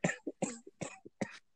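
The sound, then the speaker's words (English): A man coughs four times in a quick, steady series, each harsh burst followed by a short, softer catch of breath, with no talking in between. “He's coughing again, guys.”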